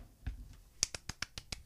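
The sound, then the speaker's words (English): A soft, polite golf clap: about seven light, crisp hand claps in a quick, even rhythm after a brief quiet start, fairly faint and with no talking. “You get a nice golf clap for me.”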